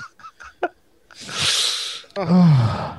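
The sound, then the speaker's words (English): A loud sneeze: a long breathy inhale builds up, then an explosive, honking burst follows, right after a few quick spoken syllables. “God bless you”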